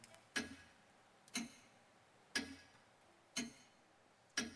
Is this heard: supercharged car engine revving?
no